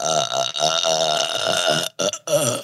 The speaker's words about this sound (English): Oh my gosh. She's having a burp attack. She's doing it again? Yeah. Just let it rip. Let one rip.